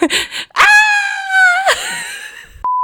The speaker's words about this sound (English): And then screams of horror.